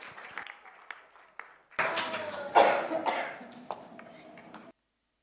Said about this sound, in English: Well done, everyone. Give yourselves a round of applause.